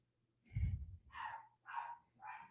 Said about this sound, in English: Okay. My dog is barking again because my wife is just not coming up.